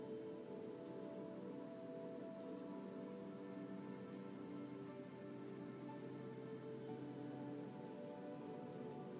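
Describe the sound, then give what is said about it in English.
Steady rain patters down onto water in a continuous, even hiss, soft and unbroken, with no voices and no pauses in the downpour. “The rain begins to move, rolling clouds pass over.”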